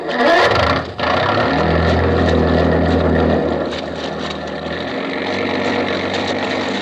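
A ship's foghorn blows a long, deep, steady tone over a constant rumble of engine and wind noise, then fades back into the droning background.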